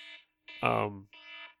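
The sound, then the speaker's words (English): A timer alarm buzzes in three quick bursts, the middle one longer, louder and rougher, with brief silent gaps between them. It comes through clearly, with no one talking over it. “The only other note that I'll say, since we just hit the timer”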